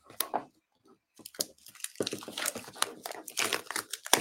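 Plastic packaging being torn open: a quick crinkle, a short pause, then a longer run of irregular crackling, rustling and ripping that builds and continues to the end.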